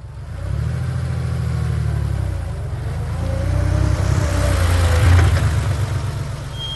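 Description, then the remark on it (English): A car engine hums steadily at a low, droning pitch for several seconds, swelling slightly louder midway as if accelerating, with no voices over it. “We're finally here. That car ride took forever, even though it only felt like a few seconds.”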